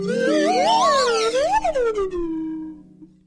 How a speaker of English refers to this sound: And a little ditty on the slide whistle for me.